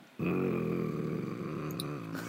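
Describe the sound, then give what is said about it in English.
A pet cat named Zelbin growls in one loud, low, continuous rumble lasting about two seconds, steady and throaty with a slightly rough, wavering texture and no talking over it. “Zelbin's growling.”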